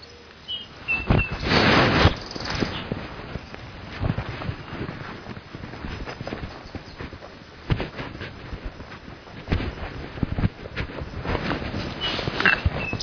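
Shuffling footsteps crunch and brush along outdoors in an uneven, steady rhythm, with soft wind noise and a few faint bird chirps over the top.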